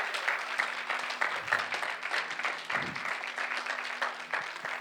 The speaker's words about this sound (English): Are there some people who agree with me this morning? Will you give God a hand clap of praise if you believe with me?